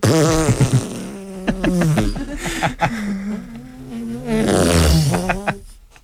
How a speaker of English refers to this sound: Prelude to a fart.